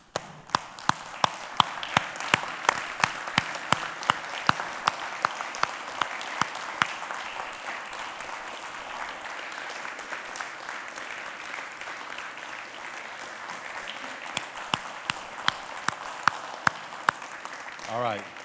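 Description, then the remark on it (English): An audience applauds steadily for about eighteen seconds as the men stand and applaud the women in the room, a dense wash of many hands clapping with sharp individual claps standing out above the roar, fading slightly toward the end. “So I want to invite the men in the room to do what we should have done a little while ago, and let's stand and let's applaud all of these women in this room today.”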